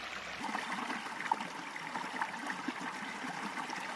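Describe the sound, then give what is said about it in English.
Steady flowing river water babbles and trickles continuously, with a few brief splashy bright spots and no voices, as cooked gampi fibre strands for paper making are placed in the river in a giant strainer. “Now takes it out to the river in a giant strainer and places it in the river water.”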